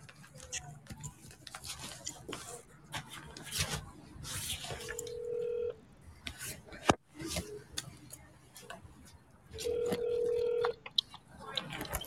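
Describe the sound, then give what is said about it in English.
An outgoing phone call to a Los Angeles number rings twice, each steady electronic ringback tone lasting about a second with a pause between, over faint clicks and ticks of background noise. “Hope it's ringing.”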